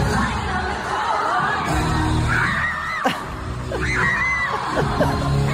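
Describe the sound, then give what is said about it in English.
A crowd of about 100,000 people at an event at the MCG roars and screams continuously, a dense wall of voices with shrill individual whoops and yells rising above the din, loud and sustained throughout. “So 100,000 people just screaming.”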